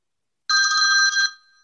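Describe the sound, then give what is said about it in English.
A single burst of an electronic telephone ring, bright and trilling with a steady buzzing warble, lasting under a second before cutting off with a faint tail. No voices. “Phone rang.”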